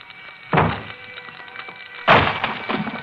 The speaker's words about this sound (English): Inside a small, cheaply furnished apartment in a shabby, old-fashioned building glows the more sinister light of fast-spreading flame. Outside its locked door, firemen swing their axes at...